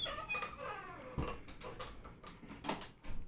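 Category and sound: household object, door being closed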